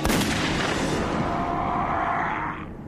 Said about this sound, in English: There's been a gunshot. Repeat, a single gunshot.